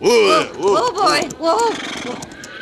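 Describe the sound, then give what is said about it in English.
A horse whinnies, a loud, quavering neigh rising and falling over about two seconds, with soft hoofbeats clopping faintly underneath, while snow keeps falling. “You hurry on into the house as soon as you put up the horses”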